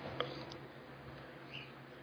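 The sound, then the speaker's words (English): A pet bird gives a few brief, faint chirps and squeaks, the sharpest one near the start, over a quiet steady background hum with no one speaking. “I hear the bird talking to you”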